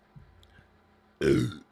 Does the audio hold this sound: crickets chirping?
no